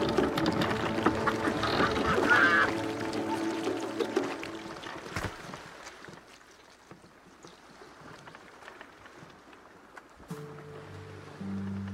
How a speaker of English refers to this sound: Oh, my God. The boat, it's still sinking. Get out! Keep looking out!